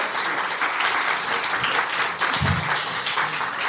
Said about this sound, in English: And thank you so much to Aoife for coming here. Can we have a round of applause for both our guests, Aoife Moore and Emmet Kirwan?